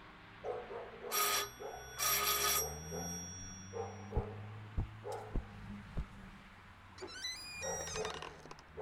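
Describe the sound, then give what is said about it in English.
A doorbell, rung by police officers at night at Alan Nelson's door in Southland City, rings twice in quick, bright bursts, followed by a series of sharp clicks and knocks and then a rising, squeaky creak toward the end. “From the way he looked, he'd been in bed when we rang the bell.”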